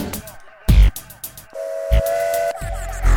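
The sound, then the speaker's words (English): A passing train's whistle sounds in sustained, steady tones, broken by short bursts of rumbling noise, fairly loud. “Lucky train.”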